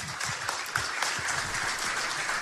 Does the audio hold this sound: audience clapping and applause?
yes